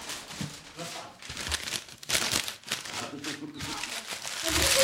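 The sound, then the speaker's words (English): Paper crinkling and rustling in irregular bursts as it is folded and handled for origami, with some voices or murmuring mixed in beneath the crackle. “And now, 15 minutes of origami.”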